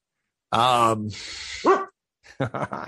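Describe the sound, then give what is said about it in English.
A female dog begs for food with a drawn-out, whiny vocal groan, then a breathy huff and a short rising whine, fairly loud; a person briefly speaks afterward. “And because it needs maintenance, my dog's annoying me for food right now.”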